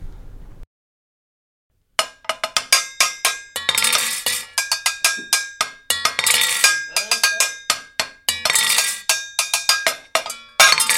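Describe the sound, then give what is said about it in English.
After a short silence, the upbeat theme song of the show Cooking with Pickles kicks in: loud, bright music driven by steady, clanking cowbell-like percussion hits in a quick regular rhythm, with no voices. “I love that theme song that we just listened to.”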